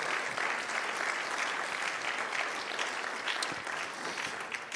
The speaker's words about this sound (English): Praise God. Let's give the Lord a hand clap offering of praise.